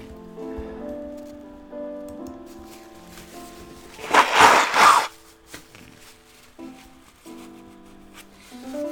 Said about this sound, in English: Apologies to my YouTube people watching me basically blow my nose. Excuse me.